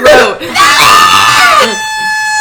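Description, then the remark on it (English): A loud, excited scream rings out shrill for over a second, pitch swooping up and down, then gives way to a steady, sustained horn-like tone. “We just blew up the internet. That scream.”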